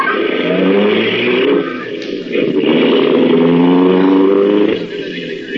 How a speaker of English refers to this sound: Slammed the door shut, got in alongside of me. And we drove off.